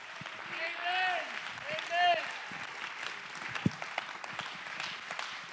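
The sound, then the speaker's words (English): An audience claps hands in praise in a dense, steady patter of applause, with raised voices calling and cheering over it and a few sharper, louder claps standing out. “Clap your hands to give him praise.”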